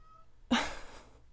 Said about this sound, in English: Oh, my cat. I wonder if you guys can hear him through the mic.